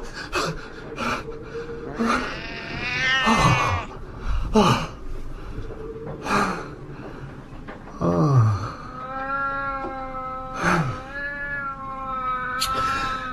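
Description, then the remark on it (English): A cat named Johnny meows and yowls repeatedly, loudly, each cry long and wavering in pitch, with short breathy sounds between the calls and no one talking. “That damn cat of yours, get him out!”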